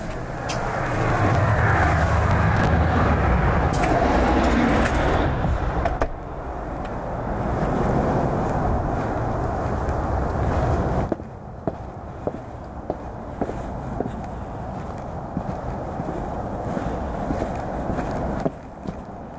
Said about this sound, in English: I'm just going to step outside, so have a listen to what it sounds like outside my house. Open the door now.